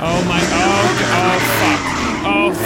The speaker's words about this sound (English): Oh my god, oh, she's doing donuts around my car.